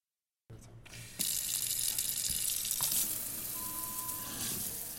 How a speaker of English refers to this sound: This faucet is a touch sensor faucet. So the idea is that ultimately, you know, it works like a normal faucet, but it also, if you leave it in the on position, you can just touch anywhere on the metal and it will turn on or off.